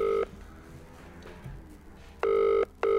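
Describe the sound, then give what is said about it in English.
A phone line ringing on an outgoing phone-a-friend call during a quiz's final round: a short tail of tone, a pause, then a loud, steady two-part ring near the end, with no talking. “So George is now getting the phone call.”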